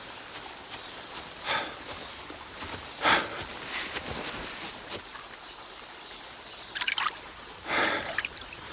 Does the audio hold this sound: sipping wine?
no